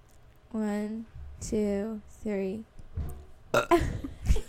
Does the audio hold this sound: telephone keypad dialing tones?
no